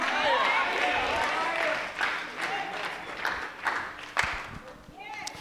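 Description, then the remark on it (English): An audience at a church service claps hands in a steady, dense patter that runs the whole time, with a few sharper claps standing out and voices calling out over it. “You ought to clap your hands and say, Lord, take me.”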